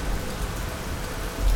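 Steady rain falls in a dense, even hiss, fairly loud, with a brief swell near the end and no voices.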